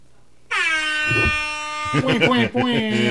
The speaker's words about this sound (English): My buzzer's so much cooler.